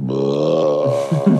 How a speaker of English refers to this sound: That was a big brother burp.